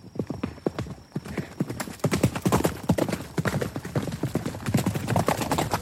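A startled horse bolts, pulling a wagon, its rapid hooves clopping continuously in a quick galloping rhythm that grows louder and denser as it goes, with no voices over it.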